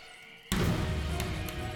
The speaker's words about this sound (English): A stall door slams shut behind you. Weird. You didn't think anyone else was in the bathroom.